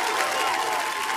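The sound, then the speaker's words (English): A dense burst of clapping from a crowd, a steady, bright crackle of many hands at an even loudness for just over a second, with no one speaking. “Where's my yep. applause? Round of applause.”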